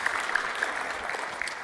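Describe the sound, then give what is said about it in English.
A group of people applauding together, a steady dense patter of many hands clapping at once, moderately loud and sustained without any talking. “Come on, if one person claps, we all have to. It's just polite.”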